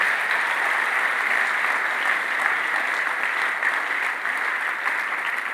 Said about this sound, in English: You're clapping.